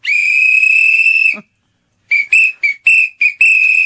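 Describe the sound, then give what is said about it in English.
A shrill sport whistle from a Classic Sport Whistle Combo Pack sounds loudly in one long sustained blast, falls silent briefly, then returns in a quick series of sharp repeated toots, blown continually to call for help. “this is an interesting one, the Classic Sport Whistle Combo Pack.”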